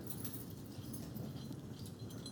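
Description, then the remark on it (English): Many sets of keys are held up and shaken at once, a steady, bright metallic rattle with small sparkling clinks scattered throughout and no voices over it. “Hear your keys? All right, now you can. You keep them out, though.”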